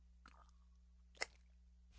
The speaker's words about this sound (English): A little sip of water there.